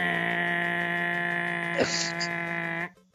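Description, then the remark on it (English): A quiz buzzer blares in one long, steady, raspy tone for nearly three seconds, with a small click partway through, then cuts off abruptly into silence. No one speaks. “Your buzzer sounds old. Get that thing adjusted.”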